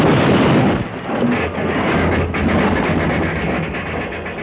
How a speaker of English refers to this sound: that's what Deuce planned to have happen to the whole train. A derailment